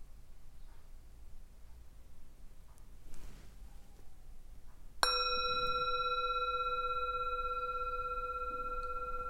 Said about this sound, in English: And as we do each time, the bell denotes the beginning of the practice and the end of the practice.